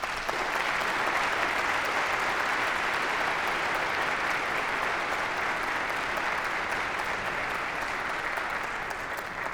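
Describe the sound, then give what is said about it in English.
An audience on the Walla Walla University campus applauds the students who said yes to serving Jesus, a dense, steady wash of many hands clapping at even loudness for the whole stretch, with no voices standing out. “Can we give a round of applause, please, to all of the students who said yes to serving Jesus this week?”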